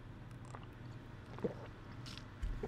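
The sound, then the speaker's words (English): Quiet sips and faint swallowing of water, a few soft wet clicks and gulps over a low steady hum, ending with a light thump as if a cup is set down. “Now, sorry, I have water.”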